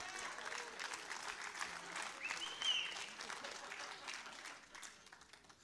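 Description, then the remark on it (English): An audience claps steadily, a dense wash of many hands with a fairly even rhythm, moderately loud throughout and tapering slightly at the end, with a faint murmur of voices underneath. “Clap a little bit and I'll get a drink.”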